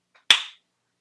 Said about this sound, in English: I'm going to make a clap here